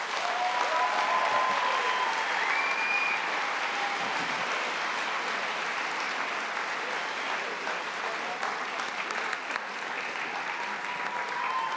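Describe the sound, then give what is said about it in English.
An audience at a baptism event claps steadily and loudly for people leaving the stage, a dense unbroken wash of applause holding at an even level for the whole stretch, with a few faint whistles or cheers rising above it. “So if you'd like to applaud them as they leave the stage.”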